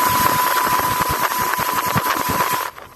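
A loud motorboat engine drones steadily with a rapid chugging pulse and a thin whine riding on top as the boat races across Pitt Lake near Cousin Point in the morning, then cuts out abruptly near the end. No one speaks.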